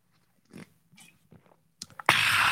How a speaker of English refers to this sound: And that is your sip of the day.